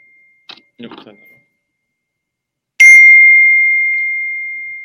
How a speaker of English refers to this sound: welcoming us with a bell. It's nice. Yeah, sorry. I'm just going to turn off my, just turn off this. So we don't get the annoying bells.